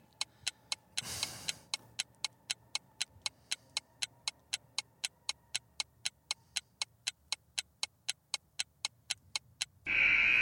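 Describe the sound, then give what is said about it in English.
A steady, sharp ticking of a shot clock counting down, about three ticks per second, running alone with a brief whoosh near the start and a loud tone cutting in at the end. “That shot clock.”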